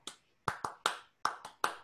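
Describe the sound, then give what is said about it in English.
Sharp hand claps in a rhythmic pattern, the clapping sequence from the middle of a song: a lone clap, a pause, then two quick sets of three claps, each crisp and fairly loud, with no talking. “And by the way, in the middle of the song, there's a clapping sequence.”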